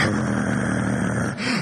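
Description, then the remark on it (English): A person imitates a football linebacker's deep, rasping growl, loud, holding it steadily before a brief catch and a second rumbling push that rises slightly in pitch. “The linebacker on the black school, he started growling at us.”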